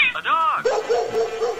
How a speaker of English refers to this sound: A cat.